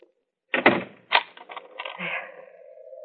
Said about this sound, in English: Would you mind standing here until you hear me lock my door?